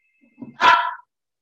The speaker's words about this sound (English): There's your dog. It's a good dog.